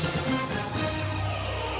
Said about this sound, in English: Short news stinger.